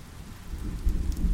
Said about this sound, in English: Cozy in this magical moment, confined to my shelter by the rain, undisturbed, and wanting to be nowhere else, I feel at peace. Rain is rejuvenating, and this rain tonight has given me the rest I needed.